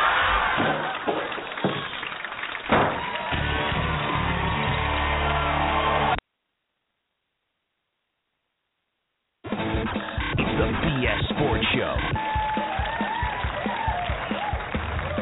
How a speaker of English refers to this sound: I'm not going to say that didn't deserve applause, because it did.